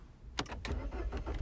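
A car engine cranks over and over in a quick, rhythmic churn with a low rumble underneath, failing to catch. Moderately loud, with no voices.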